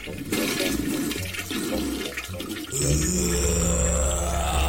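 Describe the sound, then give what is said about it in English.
A downstairs toilet is flushed by pulling its chain, a gurgling rush of water that suddenly surges louder and fuller about halfway through, swirling and draining steadily to the end with no one speaking. “Hey, go on, pull the chain.”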